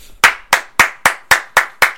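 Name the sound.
one person clapping hands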